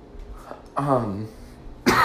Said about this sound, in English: Would not be an episode without me coughing at you.